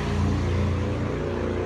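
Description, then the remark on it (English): A new motorcycle's engine drones steadily and loudly as its rider tests it, a low rumbling hum with strong harmonics that holds a constant pitch throughout, with no talking. “Sorry, I was just testing my new motorcycle while speaking.”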